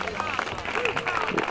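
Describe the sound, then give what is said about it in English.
A short burst of applause and cheering from a crowd, steady and fairly loud throughout, with excited voices mixed into the clapping. “I think applause is absolutely the appropriate response.”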